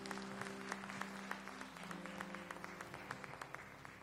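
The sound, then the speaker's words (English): A church audience claps in praise of Jesus in sustained applause, many overlapping hand claps forming a dense, steady patter with a few sharper individual claps standing out, and a low sustained hum underneath. “can you give Jesus a hand clap of praise as Brother Greg comes up?”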